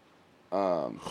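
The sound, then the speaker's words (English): A sudden, loud snort right up against the microphone, a buzzy nasal blast lasting about half a second and trailing off into a breathy hiss. “So you snort in the fucking mic.”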